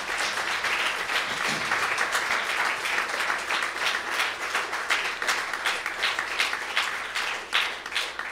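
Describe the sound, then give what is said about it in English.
A crowd applauds the choir and singers steadily for several seconds, a dense, even patter of many hands clapping at once, sustained and fairly loud throughout with no voices standing out. “I think they deserve another good round of applause tonight.”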